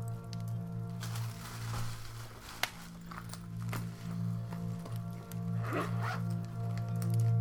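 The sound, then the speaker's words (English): A zipper on a pen case holding several green, red, black and blue pens is drawn open in several short, scratchy pulls, followed by soft handling and rustling as the case is opened, over a steady low hum. “Oh, looks like a pen case with one more green pen, one more red pen, two more black pens, and a blue pen.”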